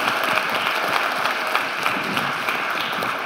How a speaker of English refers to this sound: And actually, check this out, 262 people have said, I want to follow Jesus for the first time. You can clap for that, right? Is that awesome?